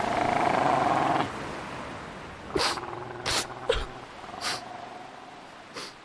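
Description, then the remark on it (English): Seals bark in a handful of short, harsh bursts spaced irregularly, with rough snorting growls between them, after an opening stretch of steady low rumble. “Get away from me, Seals! Get away!”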